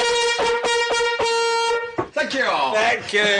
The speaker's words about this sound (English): That is a vuvuzela.